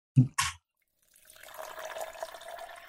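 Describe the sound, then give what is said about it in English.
Two quick clicks of a liquor bottle being opened, a short pause, then a couple of fingers of liquor glugging and splashing steadily into a glass, the pitch rising slightly as it fills. “So I'm going to crack this open now because I think it's appropriate.”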